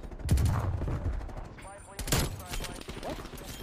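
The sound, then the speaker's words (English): Rapid, crackling bursts of video game gunfire fire in quick succession, with a louder volley near the end, while people talk over the shooting. “I wasn't even trying to shoot those, bro.”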